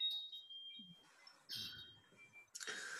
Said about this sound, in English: thanks for the reading and the wind chimes in the background. They're beautiful.